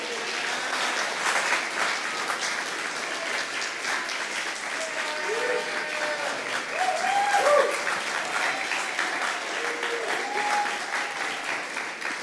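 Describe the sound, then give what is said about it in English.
Steady, sustained applause from an audience as the director of Well to Well is brought up, a dense wash of clapping that holds at an even loudness for the whole stretch, with faint voices and whoops showing through here and there. “And let's just clap for her, please.”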